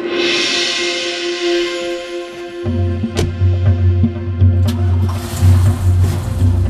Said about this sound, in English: With the truck in four-wheel drive, I spun the wheels